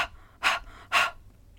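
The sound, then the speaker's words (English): A person demonstrates a panting breathing exercise, huffing out sharp, forceful breaths as the diaphragm pulls in with each breath out: two strong breathy puffs about half a second apart after a fainter one at the start, fairly loud with no talking. “And you can try one of my exercises called the panting puppy, where as the pant goes out, the diaphragm goes in like this.”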